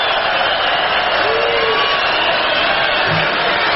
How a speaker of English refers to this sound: The crowd loves it.